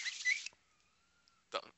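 Someone crunching a hard cough drop: two harsh, noisy bursts of crunching separated by a pause, with a faint, thin whistling tone lingering in between.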